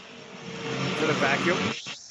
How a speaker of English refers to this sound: Is it a vacuum? That's vacuum.